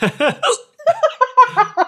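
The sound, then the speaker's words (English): A loud voice lets out a hiccuping laugh: three quick voiced bursts, a brief pause, then a rapid run of short chopped laugh-hiccups, with no words spoken. “That was a weird laugh-hiccup combination.”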